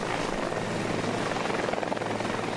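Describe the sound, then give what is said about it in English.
A medical evacuation helicopter carrying an injured person roars steadily overhead, its loud, dense rotor and engine noise filling the whole stretch with a continuous thrumming wash and no voices. “time I really started to worry was when they were getting ready to put me on the helicopter.”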